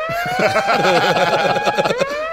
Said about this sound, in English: I just want to take about 17 seconds to appreciate this moment. First, the … siren.